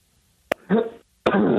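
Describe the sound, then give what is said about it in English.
A man gives two short coughs with a brief pause between them; the first is lighter, almost a throat clear, and the second is fuller and more forceful. “It sounded like he was clearing his throat for the big one cough. Was it a double cough?”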